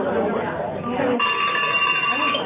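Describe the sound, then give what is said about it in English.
A roomful of people chatter loudly as attendees talk with their neighbors during a session on eBooks, then about halfway through a bell starts ringing, its steady, ringing high tones sustained over the continuing crowd talk until the end. “Okay. The bell.”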